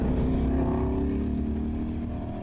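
A race car engine drones loudly and steadily at high revs on a racetrack as the car catches up to what looks like a 2016 or 2017 model year GTI; its pitch holds fairly even before easing slightly near the end. No one speaks.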